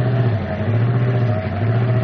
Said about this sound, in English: What happened? Car stalled. We're carrying too big a load.